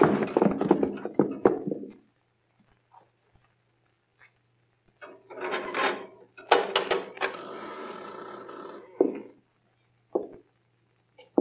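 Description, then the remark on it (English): A knife is driven into a wooden cupboard door that has no lock, to jam it shut: loud bursts of knocking and rattling scrapes, a pause, then a longer stretch of grinding and thunks ending in a few sharp taps. “Hey, there ain't no lock to this here cupboard door. Lock it. Drive something in, then. Here, this knife.”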